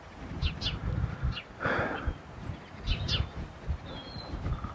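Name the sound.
woodpecker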